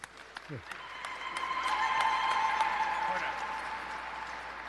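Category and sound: crowd, audience applause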